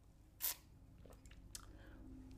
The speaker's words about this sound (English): I'm going to take a sip of coffee and then I'm going to move on.